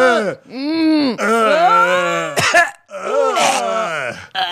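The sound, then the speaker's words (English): A voice loudly imitates vomiting: a string of about four groaning, gagging heaves with swooping pitch, broken by harsh, raspy bursts like spewing. “Oh, the puke noises? Yeah, that's us.”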